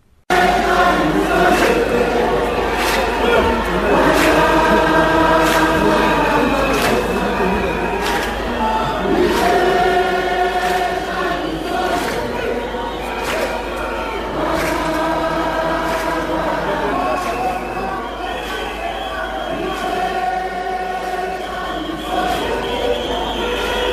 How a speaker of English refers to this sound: Jubilant and happy crowd, this after Cyril Ramaphosa was elected the new ANC president.